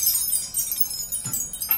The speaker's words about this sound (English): I think that calls for a little wind chime music to celebrate.